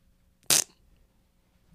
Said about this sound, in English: You can't just be like poignant and like insightful and then end it with a fart sound.